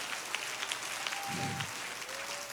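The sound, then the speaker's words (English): An audience at a sermon claps their hands together when the preacher asks them to clap if they understand, a dense, steady burst of applause that carries on for a couple of seconds at an even loudness, with a faint sustained tone humming underneath. “Somebody clap your hands if you understand what I'm talking about today.”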